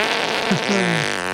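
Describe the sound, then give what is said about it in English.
A loud fart with a low buzzing, flappy rasp lasting about a second, tapering off with a brief sputter at the end, no voices present. “In the, that's like, a morning fart.”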